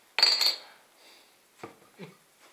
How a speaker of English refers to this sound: Alright, so let's get this out into my glass and see what I think. As always, my De Heidebrugge bottle opener.